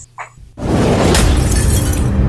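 A sheet of crisp paper is crumpled into a ball right by the microphone: after a brief quiet moment, a loud, dense burst of crackling and rustling that continues steadily to the end.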